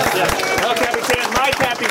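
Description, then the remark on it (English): An audience at a screening in the El Capitan theater breaks into steady applause, a dense wash of overlapping claps with sharp rhythmic hits, mixed with a murmur of cheering voices throughout. “Thank you so much to the El Capitan for hosting our screening. Let's give it up for them.”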